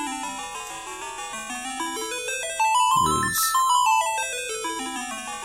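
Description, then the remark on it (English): Slowed-down music from the third game of a Nintendo series, released in 1990 on the NES: a dreamy chiptune melody of bright, beeping notes stepping up and down in steady arpeggios, with a brief spoken voice cutting in midway. “It kind of removes some of those high chiming notes from the original.”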